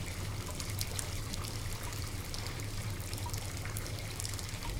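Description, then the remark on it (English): Water runs steadily from a tap, a continuous splashing trickle at moderate volume with no pauses, no voices over it. “We should really turn the water off.”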